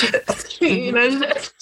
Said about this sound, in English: Choking again. Cough again.